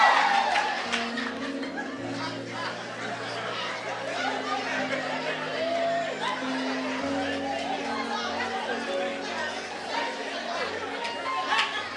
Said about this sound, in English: You can shout, you can clap, it's fine.